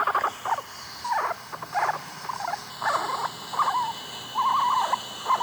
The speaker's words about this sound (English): How about some guinea pig squeaks instead? I think that's a really good idea because the boys have finally settled down and I don't want to rouse them. All right, here's Simi, our guinea pig.